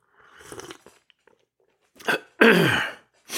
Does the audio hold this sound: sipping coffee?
yes